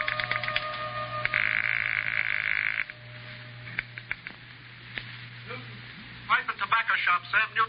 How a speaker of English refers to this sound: So, with nothing more to lose than another millimeter off the tip of my index finger, I went back to dialing.